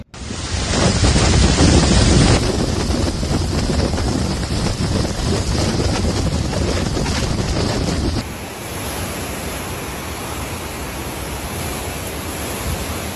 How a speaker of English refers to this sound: The Category 4 storm slammed the coast with 150-mile-an-hour winds and pushed a wall of water inland. Videos posted on social media showed massive surges of water flooding the streets of Fort Myers and Naples.